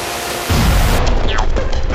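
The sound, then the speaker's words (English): A time machine sound effect for a trip back in time to 2001: a hiss gives way to a loud, steady low rumble, with faint sweeping whistle-like tones drifting over it. No one speaks. “You ready to get in the time machine?”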